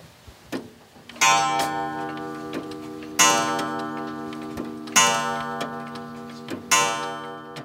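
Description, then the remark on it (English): Over 100 old mechanical clocks in a small home on a farm in Fairview, West Virginia, tick steadily and sharply, while a ringing metallic chime strikes four times at even intervals, each tone lingering and fading beneath the ticks. No one speaks. “His tidy little home, which sits on his grandparents' old farm in Fairview, West Virginia, is packed with clocks.”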